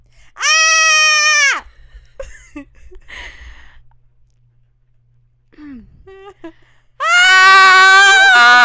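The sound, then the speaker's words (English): Two loud, piercing horror-movie style screams by a human voice, one about a second long near the start and another cutting in at the end, with quiet murmurs and small noises between. “That was horror, almost like horror scary. Movie scream.”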